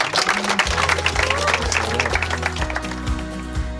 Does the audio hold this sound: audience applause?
yes